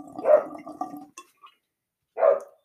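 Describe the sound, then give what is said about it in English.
A dog barks twice, a loud, drawn-out bark followed after a short pause by another sharp one, with no one talking. “That fucking dog, I swear to God.”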